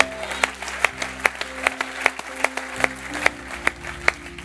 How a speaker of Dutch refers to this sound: Come on, give God a big clap. Geef God een applaus.